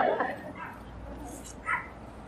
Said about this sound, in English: Yeah, even that dog's excited about it.